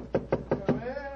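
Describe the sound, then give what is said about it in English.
Four firm knocks on the wooden door of Dr. Watson's study in a quick, even rhythm, fairly loud, followed by a brief faint murmur as the knocking stops. “Let's tap on his study door.”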